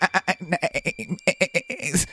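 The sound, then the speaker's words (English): A person imitates a sheep, letting out a rapid, wavering series of nasal bleats that pulse quickly for about two seconds, fairly loud, ending in a higher, strained cry. “That's not a pig. I'm imagining the pig in the story. It's a sheep.”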